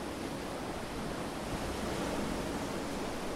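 A steady, even wash of ocean surf blended with wind, a broad hissing roar that holds at a constant level with no distinct wave breaks and no voices.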